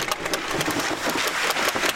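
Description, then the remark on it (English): A steady, loud mechanical roar with a broad rushing hiss, dotted with quick rattling clicks, as a pipeline pig is driven hard through an oil pipe after the crew opens valves to let in the oil that carries it. No voices are heard. “The crew starts opening valves to let in the oil that will carry the pig down the pipe.”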